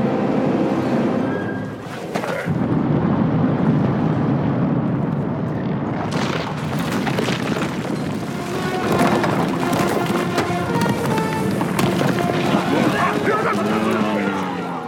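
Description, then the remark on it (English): A long, loud sci-fi explosion that roars and rumbles continuously, with crackling rock and fire debris, a brief dip, then a fresh blast that keeps churning to the end. “A big explosion. Very long explosion. It's kind of like a mix of all kinds of Star Wars explosions”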